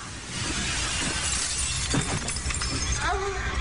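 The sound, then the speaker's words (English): A loud, crashing smash as a woman vaults onto a coffee table and breaks through it, with shattering glass and clattering debris, followed by scattered rattling fragments and a voice rising near the end. “And she's such a pretty little thing who then vaults onto a coffee table and just smashes through it.”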